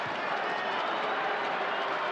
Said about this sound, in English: Crowd clearing out. They've already got their chicken, no need to stay.